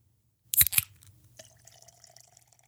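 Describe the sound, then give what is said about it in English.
Beer is poured: two sharp clicks or knocks, then a quiet, steady trickle of liquid with a soft fizzing hiss that slowly fades. No one speaks. “All right, so the beers have been poured and we're ready to go.”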